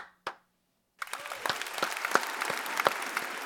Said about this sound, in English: So why don't we go ahead and clap it out?